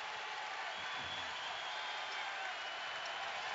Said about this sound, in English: And this crowd comes to life again.